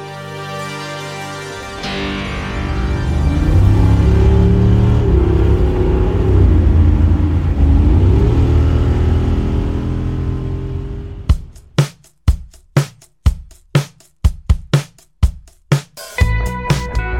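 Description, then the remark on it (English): A car engine roars loudly and revs up and down for several seconds as it accelerates, then cuts off into a run of sharp, rhythmic musical hits. “This is America on four wheels with an optional canvas top.”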